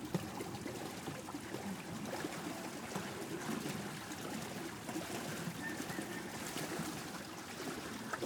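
A boat moves steadily along a river in the Mekong Delta, Vietnam, its low motor rumble blending with the continuous wash and trickle of water against the hull, with no one talking.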